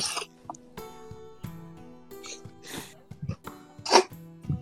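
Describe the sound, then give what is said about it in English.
A pet named Biscuit sniffles and sneezes in a few sharp, breathy bursts spaced irregularly, moderately loud, with a low murmur of voices running underneath. “There's something sniffling.”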